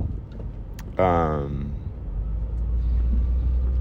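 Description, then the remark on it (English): Steady low engine and road rumble from inside a car moving slowly in traffic onto the Richmond San Rafael Bridge on a sunny morning, with a brief voice-like tonal sound about a second in before the hum continues alone. “Traffic is slowing down.”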